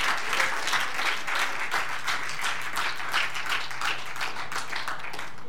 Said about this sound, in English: Will you stand up to your feet and give God a hand clap of praise this morning? Give him glory. Hallelujah.